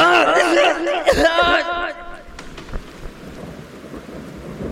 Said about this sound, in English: I don't know how long I must have been there, but when I came to, it was raining again.